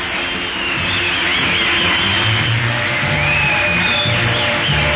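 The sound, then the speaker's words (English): A loud, dense roar of a huge, near-hysterical crowd of fans pressing at fences fills the whole stretch, with shrill screams wavering above it, muffled and thin like an old newsreel recording. “A minor miracle is mounted by the fact that there are no injuries spread among the near hysterical crowd.”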